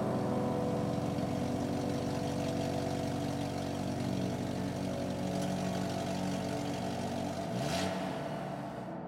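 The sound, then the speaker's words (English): A car engine runs steadily with a low, even rumble as the driver heads out, then near the end the pitch sweeps as it revs or shifts before settling lower. “I kiss my wife goodbye, get into my own car, and head out on my way.”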